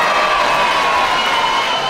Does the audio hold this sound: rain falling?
no